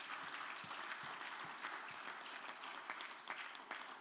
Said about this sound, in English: Amen. Let's give the Lord another mighty hand clap.